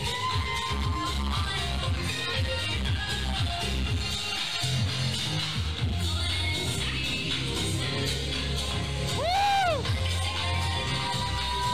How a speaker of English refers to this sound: People are cheering.